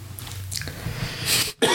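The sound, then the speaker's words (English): A person coughs several times after eating rice cakes, short harsh bursts building to a heavier fit, a brief pause, then another rough cough, with no talking. “We didn't think it was going to be coughing, did we?”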